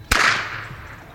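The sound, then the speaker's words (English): A single sharp whip crack from a whipper's whip, recorded up close, sudden and very loud, with a bright booming snap that rings out and fades slowly over the next second. No voices. “Eventually, the second whipper walked over the bridge and hesitantly let me record his whip up close. It was an incredible sound.”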